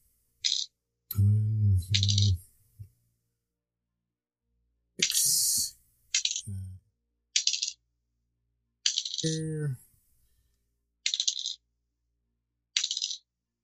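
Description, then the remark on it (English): Dice clatter loudly in a new dice box in about seven separate rolls with pauses between, some longer rattling runs with a resonant boxy rumble underneath. “Oh, your new dice box is loud as fuck.”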